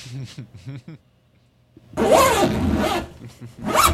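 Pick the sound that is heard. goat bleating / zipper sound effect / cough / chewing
zipper sound effect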